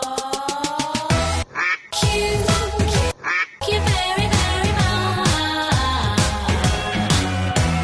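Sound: duck quacking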